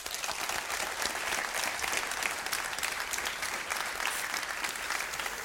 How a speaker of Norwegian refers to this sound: Tusen takk til alle dere som kom hit, og en stor applaus til denne mannen